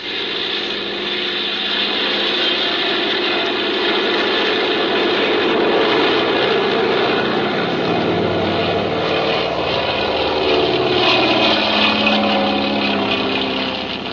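A small propeller airplane engine roars steadily, its pitch and intensity building slightly as it throttles up for takeoff, with no voices over the continuous drone.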